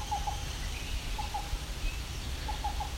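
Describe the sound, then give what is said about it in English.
A black-billed cuckoo sitting in the open calls in short clusters of soft, hollow cu-cu-cu notes, repeated at steady intervals over a constant low background rumble. “Okay, so we got a black-billed cuckoo. It's a black-billed cuckoo, and he's sitting in the open now.”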